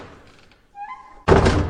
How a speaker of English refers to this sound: Any minute, that door is going to open and another villain is going to come through.